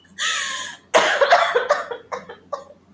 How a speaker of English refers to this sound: I'm sorry. I have to cough.